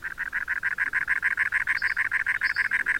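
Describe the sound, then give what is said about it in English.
A cactus wren gives its harsh chattering call, a steady, rapid series of rasping, chugging notes repeated evenly throughout, fairly loud with no other sounds. “Cactus wrens are a regular sight in their range of dry habitats from West Texas to California.”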